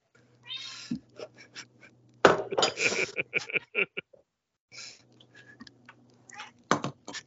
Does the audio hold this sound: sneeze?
no